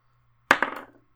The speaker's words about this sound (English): Roll me an insight check. Okay, let me pull out these dice here.